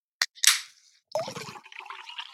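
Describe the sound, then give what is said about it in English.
A seltzer water bottle is opened: a sharp click, then a loud burst of hissing gas that fades over half a second, followed by a bubbly, fizzing pour. No one speaks. “So our special drinks are seltzer water.”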